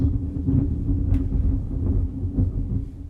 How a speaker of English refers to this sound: And you probably just heard that thunder. But, there is a nice storm. It's kind of peaceful, kind of not.